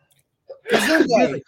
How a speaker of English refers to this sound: So, I'm going to sneeze.